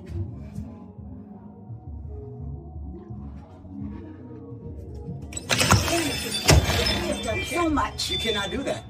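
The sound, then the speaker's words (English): A foot kicks a door during a confrontation over a barbecue with friends, two heavy, sharp thuds landing about a second apart amid a sudden burst of loud, noisy commotion, after a stretch of muffled background voices. “And you're kicking my door.”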